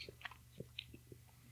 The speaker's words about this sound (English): People love your chewing sounds. I get lots of cards and letters about your chewing sounds on the air.